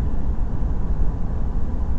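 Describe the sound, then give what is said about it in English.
Steady low rumble heard inside a car in motion, a dense, continuous drone heavy in the bass with a faint hiss on top, holding an even loudness throughout with no voices. “And the reason why I'm recording this is because we are in the car.”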